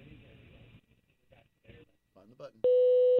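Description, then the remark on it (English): After a few faint, muffled bits of voice from the outgoing message, an answering machine sounds its beep: one loud, steady electronic tone held at a single mid pitch for about half a second. “Where's the beep?”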